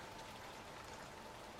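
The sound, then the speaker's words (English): Steady raindrops patter in a dense, continuous hiss, a soft wash of many tiny taps spread across the high range with no pauses. No voices are present. “Her hood muffled most sound, making the raindrops so loud, she was finally convinced she imagined it and turned back to her dirty boot when she heard the sound again.”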